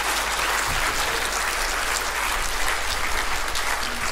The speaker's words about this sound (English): Come on, give the Lord a clap.